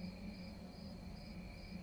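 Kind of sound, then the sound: insect, crickets chirping at night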